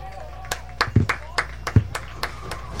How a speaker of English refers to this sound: That sounds like a golf clap. Come on, guys, let's clap. That was better.